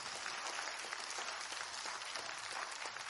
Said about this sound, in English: Let's give God a hand clap of praise for diversity.